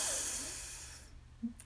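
A single long, airy deep breath drawn in from the belly during a guided breathing exercise, a soft rushing hiss that lasts about a second and gradually fades away, fairly quiet, with no talking.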